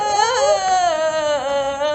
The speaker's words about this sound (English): Oh, sorry. Sorry. Windows 2000 is just starting up. Sorry, my volume was all the way up.